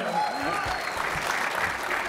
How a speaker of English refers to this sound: You can clap.